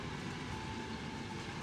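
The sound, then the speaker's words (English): A train rolls along the rails in a steady, dense rumble with a faint whining tone riding on top, loud throughout, with no voices; the train is shown at the tower in Thavnir. “And here's the train.”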